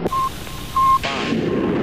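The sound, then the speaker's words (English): Two short, steady high-pitched beeps are followed by a rocket's three engines igniting at launch in a sudden loud burst, settling into a continuous broad roaring rumble that lasts to the end. “Ignition sequence start.”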